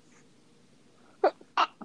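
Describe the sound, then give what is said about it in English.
Two quick, sharp sneezes burst out together, loud, against a quiet background, followed by a brief spoken word. “Bless you.”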